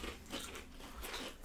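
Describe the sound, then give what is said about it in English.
Crisp crunching of an original-flavour potato chip being bitten and chewed, with several brittle cracks spread across the moment and no talking. “Love crunch. Very crunchy.”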